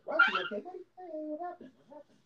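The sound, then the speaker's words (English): A puppy whimpers and whines after getting its nail caught in its hair: a yelpy opening cry followed by a few short, high, wavering whines over about two seconds, fading out at the end. “We got a puppy in the pod.”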